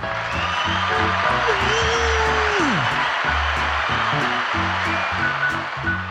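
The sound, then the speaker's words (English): A crowd cheers and whoops steadily over rhythmic, bass-heavy music, with a wavering tone that slides sharply downward midway through; the roar stays loud and constant throughout. “They were cheering for us.”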